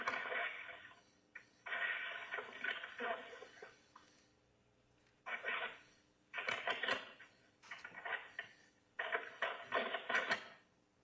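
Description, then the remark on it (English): A mobile phone rings in repeated bursts, each lasting about a second with short gaps between, moderately loud, with no one talking. “My phone, I gotta figure it out.”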